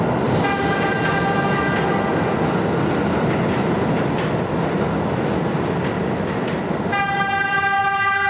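Loud, steady rumble and rattle of a Brooklyn-bound 2 express subway train in New York, heard from onboard with 14th Street as the next stop, with a faint tonal whine early on and a strong, bright harmonic whine or horn-like tone near the end.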